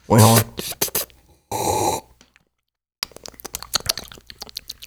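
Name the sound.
sipping coffee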